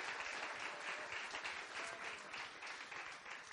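Steady, loud applause from a crowd, a dense wash of many hands clapping at once that keeps going for several seconds without pause. No voices stand out over it.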